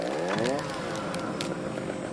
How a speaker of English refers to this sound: I went into the house and got our rusty old chainsaw. I took a deep breath. Then I revved it up